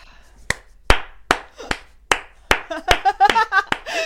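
Sharp hand slaps on a person's backside, about nine crisp smacks in a steady, evenly spaced rhythm, loud and punchy; partway through, a voice joins in over the last several slaps.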